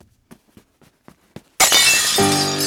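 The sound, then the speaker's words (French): A few soft, evenly spaced taps give way to a loud, sudden crash as a knocked-over Chinese porcelain vase hits the floor, a bright burst of shattering into many pieces followed by sustained ringing from the broken pieces. “J'ai renversé le vase de Chine qui s'est écrasé au sol et brisé en mille morceaux.”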